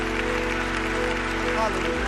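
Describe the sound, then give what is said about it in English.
An audience claps hands to honor their departed elders and the Lord, a dense, steady burst of applause lasting a couple of seconds, with sustained low musical tones humming underneath throughout. “So I know they're not here today, but if somebody will look up to the heavens where our dear elders are, and would you clap your hands and honor them and the Lord for the blessings that he has bestowed upon this body of believers.”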